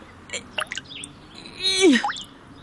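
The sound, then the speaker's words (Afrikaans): A few light water drops plink from a dripping tap, then a louder, ringing drop with a falling pitch, as if landing in a basin. There is no talking. “Die kraan drup nog steeds.”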